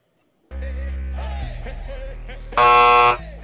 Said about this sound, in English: He's finally got one wrong. just to show that buzzer is working.